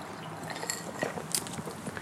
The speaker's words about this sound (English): Cheers. Cheers. Got the last of my ice in my cup, so enjoy it.